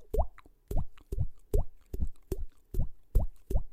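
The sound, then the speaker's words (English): A mouth imitating water drips with cheek pops: about nine hollow, upward-bending plops at a steady, fairly quick rhythm, each one short and clear, with no talking. “I'm doing that with my cheek. I'm trying to make a drip noise.”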